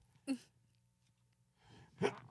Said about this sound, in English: I got to sneeze.